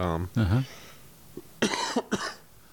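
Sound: cough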